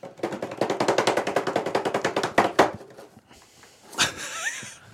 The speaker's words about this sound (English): Wait a minute. Don't do it yet. Drum roll. Drum roll. Hold on.